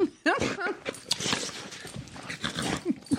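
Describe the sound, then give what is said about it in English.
A stocky five-year-old female dog, a mother of three puppies, excitedly licks a microphone, producing loud, wet, irregular slurping and clicking noises, with quick panting breaths and a few short whiny vocal sounds mixed in. “She's like literally licking the microphone right now.”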